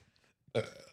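A single loud burp into a microphone erupts after a brief quiet, deep and throaty with a rough, gurgling texture that trails off over about half a second.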